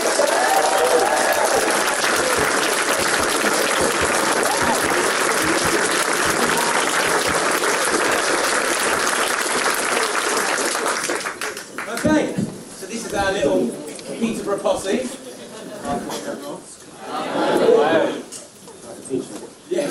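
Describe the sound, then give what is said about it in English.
A crowd applauds loudly and steadily for about eleven seconds for guest Lewis Smith, the British gymnast, a dense wash of clapping that then fades out as a man begins speaking over the last scattered claps. “Please give a huge round of applause to Mr.”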